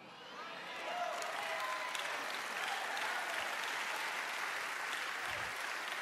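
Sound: weak audience clapping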